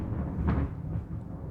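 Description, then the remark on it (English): A single deep thunder clap, a brief crack that swells into a low, heavy rumble and slowly fades, with no voices over it. “What is that? Thunder.”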